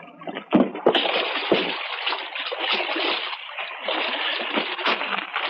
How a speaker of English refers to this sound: We were 100 yards offshore when we dropped anchor in about 15 feet of water. We lowered the dinghy and a few minutes later beached it through the surf.